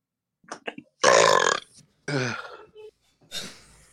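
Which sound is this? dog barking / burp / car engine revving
burp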